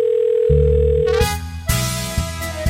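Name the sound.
telephone dial tone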